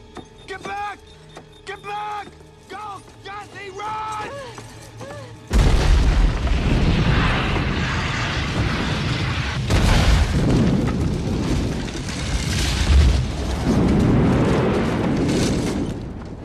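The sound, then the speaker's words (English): Voices talk briefly, then a sudden, loud explosion in a film, set off by a tripwire, erupts into a booming, rumbling blast that keeps roaring, with a second heavy surge a few seconds later. “Oh, tripwire. Explosion.”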